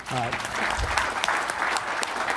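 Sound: audience round of applause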